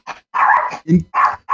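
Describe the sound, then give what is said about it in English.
A dog barks several times in quick succession, loud, with short sharp yelps separated by brief gaps, one lower woof in the middle. “Yes, even the dog agrees. Dogs.”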